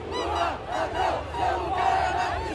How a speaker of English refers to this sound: Now they're shouting, "Lula, thief, your place is in prison." Ostensibly, this event is to celebrate the 200th anniversary of Brazil's independence.